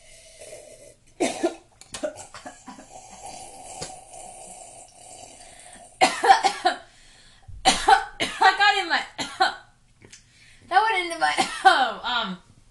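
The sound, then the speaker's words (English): A loud coughing fit as something goes up the person's nose: an early sharp cough, then several clusters of harsh coughs and strained, wheezy voiced gasps, separated by short pauses over a faint background hum. “I coughed and then it went to my nose.”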